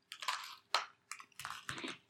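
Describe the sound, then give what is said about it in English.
Crunchy chewing of peppermint Oreo cookies: a series of five or six crisp, crackling bites in an uneven rhythm, fairly soft, with no talking. “So let's taste these Oreos.”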